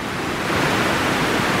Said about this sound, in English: So I tried something else last night as I was lying awake. I got my little AirPods in. And I tried some white noise.